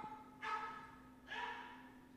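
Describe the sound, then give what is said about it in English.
A dog barks twice, two rough, somewhat drawn-out barks about a second apart, over a steady low hum. “I hate that dog.”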